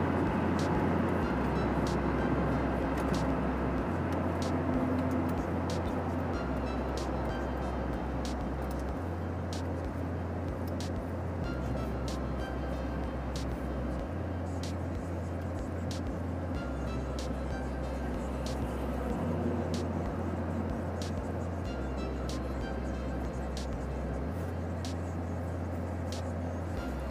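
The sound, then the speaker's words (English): Steady road and engine rumble from inside a car driving in city traffic toward the downtown part of a city, continuous for the whole stretch, with the low drone shifting slightly as the vehicle moves through traffic; no one speaks. “The traffic stopped immediately.”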